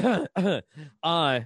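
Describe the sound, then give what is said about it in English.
Four short, strained asthma wheezing breaths in a row, each a voiced, groan-like rasp with a wavering pitch; the third is fainter and rougher, the last steadier and a bit longer. “You hear that little wheeze?”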